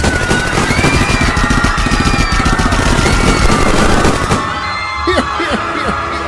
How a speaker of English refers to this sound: It's a typical, bright, sunshiny day in the streets of Cityopolis when suddenly the peaceful atmosphere is interrupted by automatic gunfire.